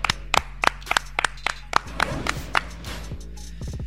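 Roughly ten sharp hand claps in a fairly steady rhythm that loosens toward the end, crisp and loud over a low, steady background hum, with no talking.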